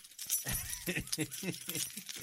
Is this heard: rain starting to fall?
no